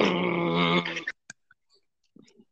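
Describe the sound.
A voice imitates a boat horn to describe a loud burp that echoed: one loud, steady, buzzing low blast held for about a second, then cut off, followed by a few faint clicks and soft rustles.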